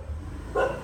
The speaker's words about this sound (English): They have dogs, they're mutts here in Asia, in Thailand, and they all look like Asian mutts. It's fascinating. They're all nice though. They're very nice. Anyways, you've got a lot of dogs here, and that's what you're hearing.